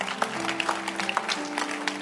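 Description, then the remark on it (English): A crowd claps for someone's parents, a steady, dense rattle of many hands with small peaks throughout, moderately loud over a faint steady hum. “Can you clap your hands for her parents?”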